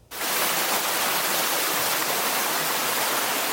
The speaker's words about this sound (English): Thick, dirty water pouring through the village of Cache Creek Wednesday. Mud and debris strewn across the highway.